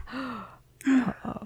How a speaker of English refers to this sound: Gasp.